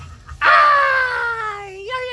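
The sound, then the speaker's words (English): A person lets out one loud, sustained scream that bursts in suddenly, holds for over a second, then slides downward in pitch and trails off into a lower strained cry. “You know, I think when you do podcasts, you're supposed to scream”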